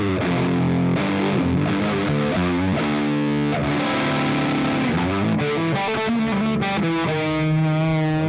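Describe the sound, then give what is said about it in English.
A loud, thick fuzz-drenched electric guitar played through a fuzz pedal plays a sustained riff, its saturated, buzzy tone full of harmonics and fizz, with notes sliding and changing continuously for several seconds. No one speaks over it. “The important thing to keep in mind is fuzz, although similar, is not distortion. This is fuzz.”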